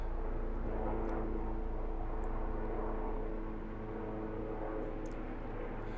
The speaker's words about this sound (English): Like that helicopter.